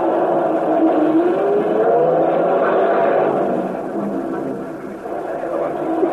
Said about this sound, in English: Sit down, baby, and let the guy start his bus.